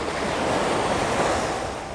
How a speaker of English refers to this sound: And to wake with the sound of the crashing waves.